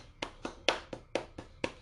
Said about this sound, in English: So today is the last day for our senior students. So I want to give them a round of applause.